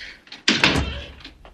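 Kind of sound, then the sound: household object, door slamming shut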